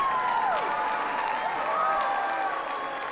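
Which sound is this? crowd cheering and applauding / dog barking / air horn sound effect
crowd cheering and applauding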